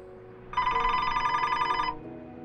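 A telephone rings once, a loud, bright electronic trill lasting just over a second, standing alone above a faint low background hum with no voices.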